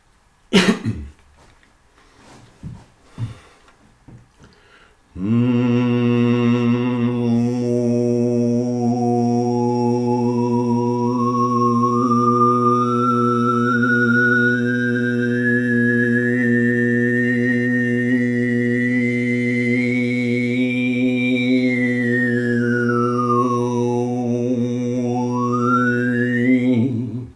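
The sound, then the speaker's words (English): A few brief coughs and throat clears, then overtone singing: a steady low vocal drone with a bright, flute-like whistling harmonic that climbs slowly, then swoops down and back up. “here I can probably sing some overtones or the scale for you”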